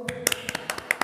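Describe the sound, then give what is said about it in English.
A brief, quick burst of hand clapping, about eight sharp claps in an uneven rhythm from a couple of people, fairly soft, with no talking; hosts applauding their number one pick, the film Hereditary. “So, by a round of applause.”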